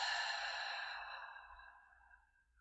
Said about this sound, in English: And again, breathing in through your nose. And breathing out through your mouth.